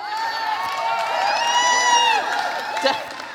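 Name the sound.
small group cheering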